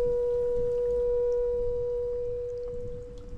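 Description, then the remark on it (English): A water tap at a friend's house, set at just the right frequency, vibrating on one steady, sustained tone, a pure hum with faint overtones over a low rumble, holding the note before it fades slightly near the end. “And that was a friend's tap. Like, he set this tap at just the right frequency, it would like hit a note, and it would carry on that note, and then it would just start to die off and it would stop vibrating altogether.”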